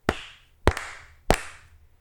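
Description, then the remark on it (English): Three hard, sharp hand claps made for audio sync, evenly spaced about half a second apart, each ringing briefly; the second sounds slightly doubled. No one talks. “I put my hands up and I was like, oh, these claps aren't going to be as good. So I had to clap real hard.”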